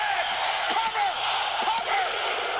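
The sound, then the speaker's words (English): A large arena crowd chanting a count of one, two, three together over a steady roar of noise, punctuated by a few sharp thuds. “That's the entire audience. Yeah. At the same time, saying 1, 2, 3.”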